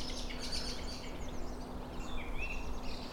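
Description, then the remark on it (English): A song thrush sings from a tree along a canal, its high whistled phrases and brief trills rising over a steady outdoor hiss and a low hum. “Yeah, it's a brilliant song thrush.”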